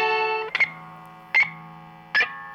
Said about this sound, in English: Now look down, the glass slippers are on your feet. This is what they sound like as they meet.